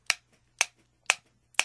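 A ballpoint pen taps out a steady beat for a children's English word chant: four sharp, bright clicks evenly spaced about half a second apart, each quickly fading, with no talking.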